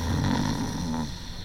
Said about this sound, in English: The thing I recalled most clearly was my fellow traveler's considerable snoring abilities.